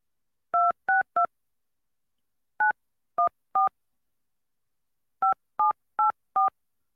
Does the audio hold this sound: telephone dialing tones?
yes